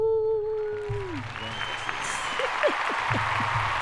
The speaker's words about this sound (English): What do we give Jamaica? Do we give Jamaica like a full stadium applause